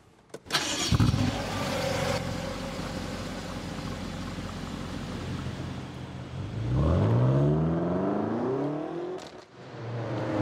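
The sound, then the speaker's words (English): A remapped car engine, pushing about 370 brake horsepower, cranks and starts, idles with a steady low rumble, then revs up and accelerates with rising harmonic whine, fairly loud, with no talking. “This car's actually been remapped”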